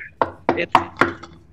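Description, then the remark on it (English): Four sharp knocks on a hard surface in quick succession, each a crisp, loud rap with a brief ringing tail, followed by a fainter fifth tap, with no talking over them. “I knock on the door and see what happens. When you knock on it, it's, how do I describe that sound? It's not like this.”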